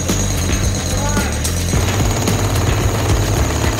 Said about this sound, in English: I don't think the jackhammer is going to work. I'm going in with the freaking axe at this point. This is doing more than the jackhammer.